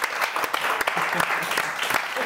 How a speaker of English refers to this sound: Round of applause for our winner.